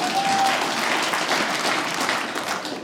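An audience claps steadily in response to being asked whether they know Gold's Gym, a dense wash of many hands at fairly even loudness throughout, fading slightly at the very end.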